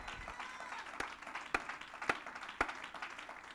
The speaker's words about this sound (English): Clap your hands as loud as you can before you're seated.